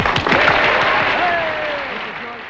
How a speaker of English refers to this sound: Okay, cue the clap now.